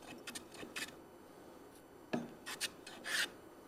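A big hand plane takes a fairly heavy shaving off wood in a series of short, raspy strokes, uneven in rhythm, with a dull knock partway through. Fairly quiet, and no one speaks.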